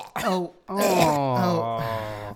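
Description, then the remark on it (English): Exaggerated, theatrical throat clearing and hacking from a single voice: a short strained burst, then a longer drawn-out, groaning hack with wavering pitch. No words are spoken. “Actually, hold on, let me cough up some cum.”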